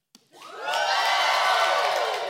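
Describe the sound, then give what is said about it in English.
After a short click, a crowd of children, the Cove Kids, bursts into loud, high-pitched shouting and cheering, letting forth a Holy Ghost Jesus praise as loud as they can, swelling quickly and holding as a sustained roar for about two seconds. “When you see me take a drink of water because my throat gets dry, that's when you get to, like, let forward this Holy Ghost Jesus praise as loud as you can, okay?”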